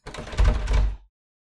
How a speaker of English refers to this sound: My goodness. The door seems to be locked.